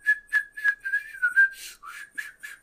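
A person whistles a short, bouncy tune, with quick repeated notes in a steady rhythm followed by a few breathier, wavering ones as the whistle falters.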